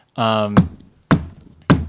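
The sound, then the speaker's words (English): A brief voiced sound, then three firm knocks on wood, evenly spaced about half a second apart, fairly loud with short dull decays. “Now my classes have not had COVID outbreaks, knock on wood.”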